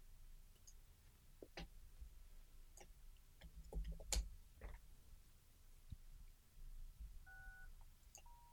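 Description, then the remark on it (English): Scattered clicks and taps lead into electronic intercom keypad tones near the end, a short dual-pitch beep followed by a steadier tone, as people are buzzed in through the door. No one speaks. “Okay, there we go. Buzz them in.”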